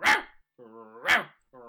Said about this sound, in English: Oh, doggy, yes, you're right. I need to get out of the house.